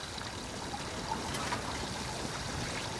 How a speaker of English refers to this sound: Quickly, grab a bucket and help me bail the water out of the cabin of the boat. We're on Israel's rickety and sinking boat in the middle of the Albemarle Sound, somewhere near Kitty Hawk, North Carolina.